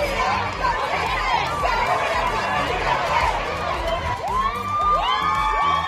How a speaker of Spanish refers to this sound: Y esta escena es de colección. Las Ateneas, mujeres policías con cascos y escudos, se unieron a la marcha gritando esto.